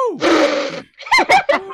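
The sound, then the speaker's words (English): A single sneeze bursts out as a loud, breathy spray of noise lasting about half a second, followed by a few short, pitched vocal exclamations. “Oh, somebody just sneezed.”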